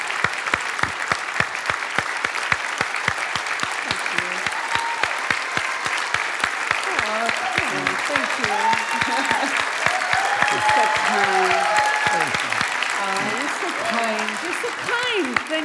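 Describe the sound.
Sustained, dense applause from a large crowd at Cathedral of Faith welcoming back guest Roma Downey fills the whole stretch, a steady roar of clapping with cheers and voices rising through it midway.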